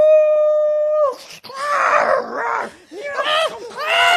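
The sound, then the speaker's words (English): A loud werewolf howl opens on a long, steady held note, then breaks into wavering, rising-and-falling snarling cries that swell and fade over the next few seconds. “Yeah, he's a werewolf.”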